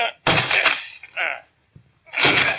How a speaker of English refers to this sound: Come on, let's break down the door.